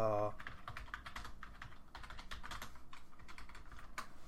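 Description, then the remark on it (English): Rapid, clacky typing on a loud, massive, new computer keyboard, with dense irregular keystrokes continuing steadily for several seconds. “I hope y'all didn't hear my massive keyboard.”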